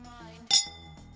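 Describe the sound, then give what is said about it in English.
Zonzi drinking glasses clink once in a toast, a single bright, sharp chime with a brief high ringing tail, heard over a low, steady background hum. “Let's do a little cheers here at the end.”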